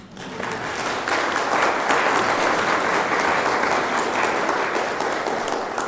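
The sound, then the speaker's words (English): A church audience in the South Bay breaks into steady applause, a dense wash of many hands clapping that swells after the first second and holds at a fairly loud, even level without talk. “Could I get your applause on that?”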